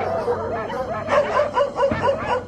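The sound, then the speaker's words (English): Several dogs at Vermont's largest dog pound bark and yelp in a noisy, overlapping chorus, with a quick run of sharp barks in the second half, steady against a busy background. “Trent Butler lived next door to a Union Carbide chemical experimentation facility on one side, and on the other, Vermont's largest dog pound.”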